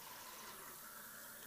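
Steady rush of water pouring from a pipe through the small hole in the top of a Patterson film developing tank, filling it with water of about 20 degrees; a continuous hiss with a gurgling, filling quality and no talking.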